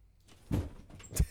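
A door is opened and then shut, two solid knocks about half a second apart, the second a heavier thud, with a faint rattle between them and no voices.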